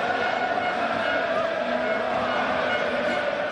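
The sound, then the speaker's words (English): Fake crowd noise piped into a staged cricket match in western India: a steady wash of crowd noise, a dense babble of many voices blended into a continuous roar with no pauses, holding an even loudness throughout. “That boisterous crowd you hear was nowhere to be seen because the gang's cameras stayed fixed on the cricket pitch as those farm workers we mentioned, now in uniform, shuffled about.”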